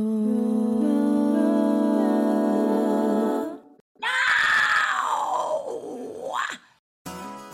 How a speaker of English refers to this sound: That roar was from vocal coach and metal scream expert Melissa Cross. Melissa is one of the most prominent vocal coaches in the metal scene.